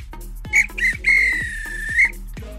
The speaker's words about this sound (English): If this were a real bit of extra time, this is when the ref blow the whistle, because it's finished.